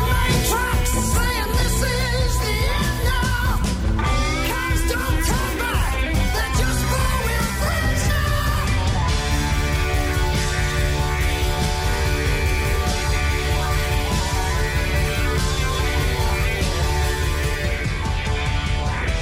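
A loud, dense rock song with the band's drummer singing the male lead vocal over driving drums and bright, layered electric guitar; the arrangement thickens into a steady wall of sound partway through.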